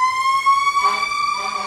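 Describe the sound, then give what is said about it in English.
An emergency vehicle siren sounds a loud, steady wailing tone, its pitch rising slightly and then holding, continuous throughout with no talking over it. “That tends to happen when we podcast. I think our podcast is actually bad luck. It brings fires and accidents and heart attacks.”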